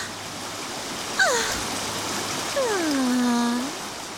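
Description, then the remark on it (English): A steady rush of a brook's flowing water as it rises fills the background, joined by two sliding, descending whistle-like tones, one short and one long and drawn out. “The rush of her waters thunders.”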